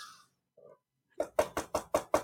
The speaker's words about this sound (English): Oh, what a weak little knock. Told you.